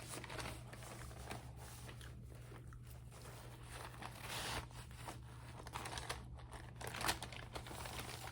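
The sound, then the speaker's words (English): Rummaging through a container of pens, pencils and markers, with scattered light clicks, rattles and rustling over a steady low hum, busiest in a few quick bursts. “This is where I keep all of my pens and pencils and markers.”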